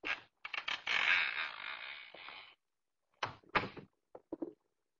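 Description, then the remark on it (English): A partially open door creaks open at night in a long, drawn-out groan lasting about two seconds, followed after a pause by a few shorter, choppy creaks and clicks. “That door's already partially open.”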